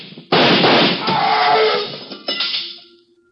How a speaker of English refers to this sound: Fire through the door.